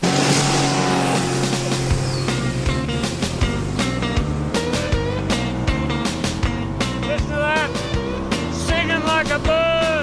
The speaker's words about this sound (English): If there's one thing Dad loved more than Serenity, it was a two-stroke engine on full throttle.